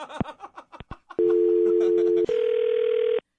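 Brief clicks and fragments of line noise, after a phone call disconnects, give way to a loud, steady telephone dial tone that holds for about a second, jumps to a slightly higher steady tone, then cuts off abruptly.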